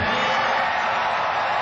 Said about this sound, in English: I love how the crowd in Dallas goes nuts, too. Like, the crowd in Dallas was booing Roger Goodell all night because that's what they do at the draft.